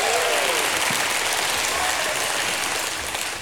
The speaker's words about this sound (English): Has God been faithful to anybody in the house? You ought to give God a hand clap and a shout of praise.